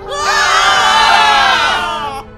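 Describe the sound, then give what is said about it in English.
A crowd of investors screams in alarm and runs for cover as a huge anchor bursts through a skylight. Many voices overlap in a loud, sustained chorus of panicked shrieks that cuts off abruptly after about two seconds. “The investors run for cover and scream.”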